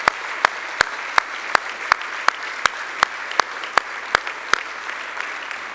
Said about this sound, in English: And what I'd like to do this morning is that there's a bunch of teachers and volunteers who are investing a lot in of time this morning, and would we just clap for them, and so they can say, "Hey, what are you guys clapping about?" Right?